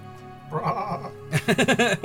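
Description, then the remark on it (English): A person imitates a sheep with a wavering, nasal bleat, first a drawn-out tone and then a louder, choppy series of pulsing bleats, clear with no other sounds. “And you are a sheep.”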